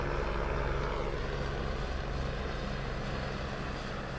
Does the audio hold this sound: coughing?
no